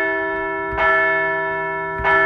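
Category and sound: signal or alarm, bell ringing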